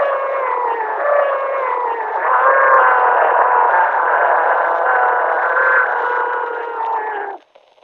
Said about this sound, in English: Electric hum heard and further high-pitched wail.